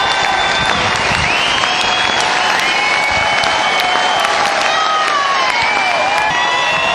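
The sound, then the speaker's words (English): A large concert crowd, on its feet after a rock band's set ends and the band leaves the stage, applauds steadily with dense, continuous clapping, punctuated by shrill whistles and cheers rising above it, loud and sustained throughout. “And the guys just left the stage, and now the crowd are, everybody's on their feet, and they're ready for more, as you hear.”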